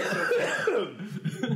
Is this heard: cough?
yes